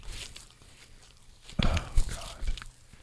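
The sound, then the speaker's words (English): Wet chewing of soft marshmallow Peeps candy by a man, a few squishy mouthfuls in an irregular rhythm, with no talking over it. “The sound of him chewing the peeps are so gross.”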